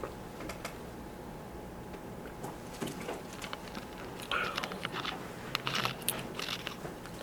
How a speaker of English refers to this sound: Go to John chapter 15. John chapter 15, verse 10. John chapter 15. You're still turning pages.